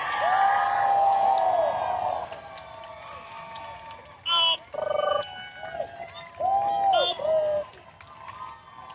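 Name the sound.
audience cheering and applauding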